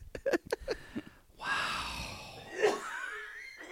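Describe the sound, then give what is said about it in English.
Several quick, choppy coughs, then a long, strained, wheezy breath that whistles and rises in pitch, with no talking, from a person who has strained their voice by doing many voices. “I'm coughing because I've done too many voices tonight.”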